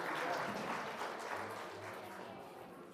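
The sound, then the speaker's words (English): A crowd claps in sustained applause for the kids and adults, a dense, steady patter of many hands that stays loud throughout and tapers only slightly toward the end, with faint voices mixed in. “Let's give the kids a round of applause for hanging out.”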